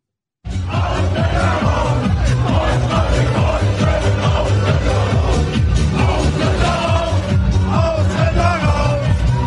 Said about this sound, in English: Now, they're going to be chanting in German, but what they're actually saying is basically immigrants out, Germany to the Germans, immigrants out. And these are the 18 to 35-year-old crowd.